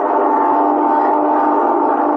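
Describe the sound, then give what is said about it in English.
The midnight plane flying overhead over a building, its engines a loud, steady droning roar with a humming tonal edge that holds unchanged for the whole couple of seconds, with no voices. “That's midnight plane now. I hear it every night that flies over the building where I work.”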